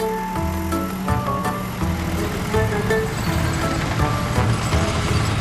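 A dump truck engine in a construction area rumbles steadily with low droning tones and mechanical clatter as it carries unneeded material out, staying loud throughout without any talking.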